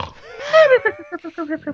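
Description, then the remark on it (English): A person imitates loud snoring with their voice: one drawn-out, throaty snort followed by a quick series of short, grunting pulses. “Snore, snore, snore.”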